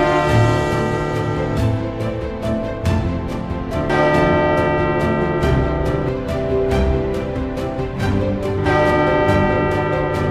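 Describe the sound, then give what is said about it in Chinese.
A bell tolls over and over, its loud strikes ringing out in a steady rhythm and overlapping into a shimmering hum, with no voices present; its fifth strike is the signal for archers to start shooting. “弓箭手预备，待会钟声响第5下，就开始发射。”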